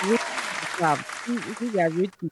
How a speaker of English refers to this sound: I'm gonna go ahead and clap it up